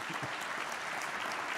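An audience claps steadily, a dense wash of many hands applauding at an even level throughout, with no voices standing out above it.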